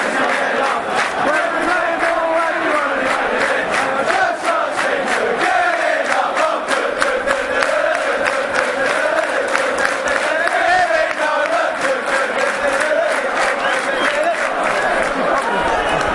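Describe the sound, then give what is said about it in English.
A large stadium crowd cheers Kevin Nolan in a loud, sustained roar that barely dips for about sixteen seconds, with mingled shouts and quick bursts of clapping running through it. “Told you, everyone hates him, but look at that, everyone's cheering him.”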